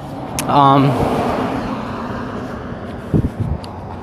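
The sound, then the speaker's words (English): Steady roadside traffic rumble near a bus stop fills the background, with a brief voice early on and a few soft knocks or footsteps toward the end. “Almost at the bus stop so I can go into the city.”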